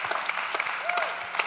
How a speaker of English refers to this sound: And yeah, you get your clap.